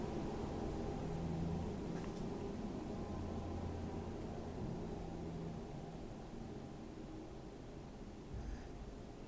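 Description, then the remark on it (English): A steady low rumble of distant city traffic at an intersection fills the background, a broad continuous hum with faint engine drones of buses and honking, no voices, heard from far away at a low, even level. “You can hear in the distance the sounds of the city.”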